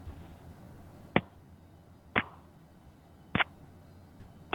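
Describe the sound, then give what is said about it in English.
Four sharp, hard smacks of a penis slapped against a telephone, spaced about a second apart over a faint, steady line hiss, with no talking. “Yeah, it sounded like you were hitting a baseball bat on the phone.”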